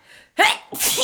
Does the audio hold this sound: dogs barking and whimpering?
no